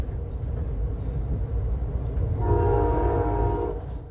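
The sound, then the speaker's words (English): A passenger train rumbles steadily along the tracks beside the California coastline on a morning, then its horn sounds one sustained, loud blast over the low rolling noise before fading back to the clatter. “As I watch the California coastline pass by from the comfort of my train seat, remembering Bell's comments made the million-dollar views of the water on a gorgeous morning a lot more unsettling.”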